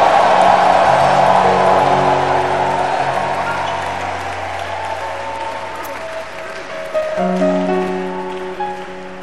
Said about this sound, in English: If you're happy about what I'm saying, I want you to clap your hands and give Jesus a shout of victory.